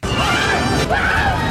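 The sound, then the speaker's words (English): A loud, harsh scream sound effect, a strained cry that rises and wavers, breaks off briefly, then swells again over a noisy, crashing background, lasting about a second and a half. “So there's no trace of this scream.”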